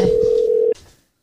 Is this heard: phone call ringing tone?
yes